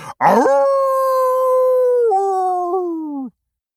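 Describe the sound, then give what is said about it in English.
A single long wolf howl from the character Big Bad, loud, rising sharply at the start, holding a steady tone for about three seconds with a couple of small downward wavers, then breaking off. “Oh, this year, I really learned how to let my true howl ring out.”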